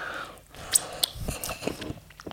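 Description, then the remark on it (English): Soft, moist chewing of hot dog bread, with irregular wet smacks and small clicks of the mouth, plus a couple of sharper crackly bits; no talking. “Maybe there's a reason why no one eats on podcasts.”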